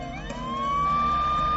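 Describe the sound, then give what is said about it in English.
A police car siren, responding to a 911 emergency call, winds up in pitch and settles into a steady, loud wail that grows stronger as it approaches, with a low engine rumble beneath and no voices. “The emergency operator dispatched two police vehicles to the scene.”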